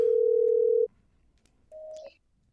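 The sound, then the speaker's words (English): A loud, steady telephone tone holds for almost a second, then cuts to silence before a shorter, higher phone tone sounds, like an outgoing call ringing through, as the speaker phones a friend who had texted back. “All right, he texted me back, but I'll call him anyway.”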